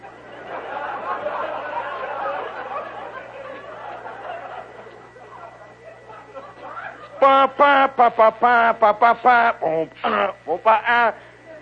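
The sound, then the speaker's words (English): A stadium crowd roars in approval as a marching band forms the Block H on the field, a dense steady wash of noise for several seconds, then it gives way to a run of short, sharp, pitched bursts in quick rhythm. “You can hear the crowd, the great roar of approval.”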